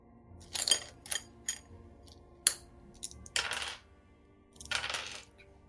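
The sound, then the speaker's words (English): Eight-sided dice clatter onto a hard tabletop in several quick bursts, sharp clicking rattles that tumble and settle, fairly quiet, with no one speaking; the dice are rolled to total cold damage for a spell cast at a high level. “It's cast at a fairly high level, so let me get the appropriate dice for this.”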